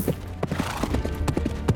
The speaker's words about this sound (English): Claudius leaned forward on his saddle and squinted at the distant, galloping horse.